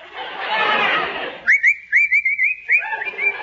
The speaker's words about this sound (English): What's the matter with you? What are you whistling for? Nothing. Can't a fellow whistle?